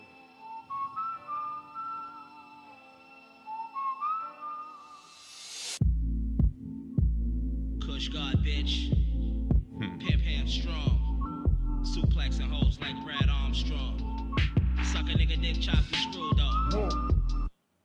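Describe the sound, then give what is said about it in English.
A hip-hop beat played from a streaming service plays loud: a whistled melody opens alone, then heavy booming bass kicks and crisp hi-hats drop in a steady rhythm, with no vocals. “Let me see if he has it on streaming. He might not have it on here. Oh, he does.”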